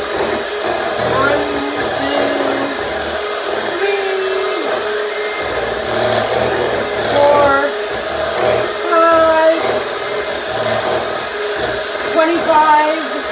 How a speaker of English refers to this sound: Okay, we're done with the mixer, thank God. So, I'm going to unplug it